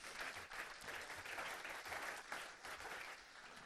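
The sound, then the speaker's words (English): A round of applause from an audience for the new Expressing Star newspaper editor, with many hands clapping in a dense, steady patter that stays fairly loud for a few seconds without letting up. “Round of applause for our editor.”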